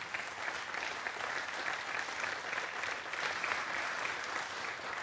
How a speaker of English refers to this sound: as she comes, if you just kind of give her some encouragement by a round of applause.